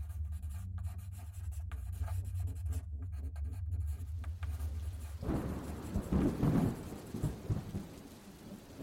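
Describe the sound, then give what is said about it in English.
A pen nib scratches steadily across a blank page in short strokes, while a low rumble of thunder and rain builds in the background and swells after a few seconds. “He pressed the nib of his pen to the blank page and began to write.”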